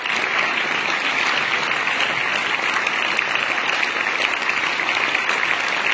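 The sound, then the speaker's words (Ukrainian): A large audience in a theatre rises after a concert and applauds in a long, unbroken standing ovation, dense clapping holding steady and loud throughout with no pauses and no voices rising above it. “але після концерту, коли публіка, піднявшись, аплодувала, довгі овації там, і це теж є на відео, у нас є багато відео з Італії.”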